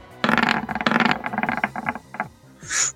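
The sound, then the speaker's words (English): Dice roll and clatter across a hard surface during a game, a quick burst of rattling clicks that slows and settles on a roll of 14, followed by a brief soft hiss. Fairly loud, with no talking. “I rolled a 14 on the dice.”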